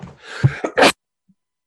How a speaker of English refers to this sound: I made him sneeze so hard that it's all over his hand.